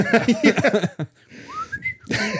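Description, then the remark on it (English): A person speaks, then gives a short, thin whistle that slides upward for about half a second, followed by more talking. The whistle is moderately loud. “He can do it while whistling.”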